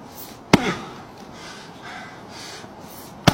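Two sharp, loud thwacks of an axe splitting a wood stump, about three seconds apart, with soft breathy rustling and faint huffs in the pause between strikes.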